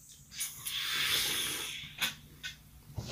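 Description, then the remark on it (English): A drink can cracks open with a sharp click, followed by a long, steady fizzing hiss that fades out, then a few small clicks and taps. “I don't know, I'm going to open this can.”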